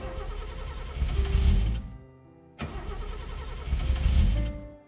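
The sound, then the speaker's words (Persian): A car engine cranks twice in long, grinding bursts with a short pause between, each attempt churning without catching, failing to start. It's loud, and no voices are heard. “اینم که روشن نمیشه.”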